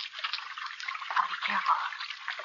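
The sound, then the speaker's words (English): Water trickles steadily, a continuous bright, splashy babble with small gurgling surges that rise and fall throughout. “Water. Water again.”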